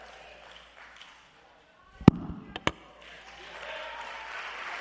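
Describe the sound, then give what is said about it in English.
A few sharp knocks and thumps ring out as a preacher puts his microphone down, then the audience starts clapping, a steady wash of applause that holds at moderate loudness to the end. “I didn't put my mic down for you to clap.”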